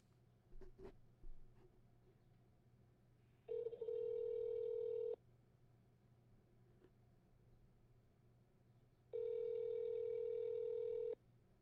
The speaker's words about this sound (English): Let me try and make another phone call real quick.